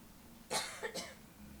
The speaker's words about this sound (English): We have to cut for a second. I have to cough. Okay?